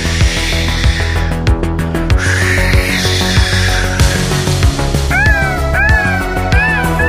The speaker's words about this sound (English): Those are seagulls.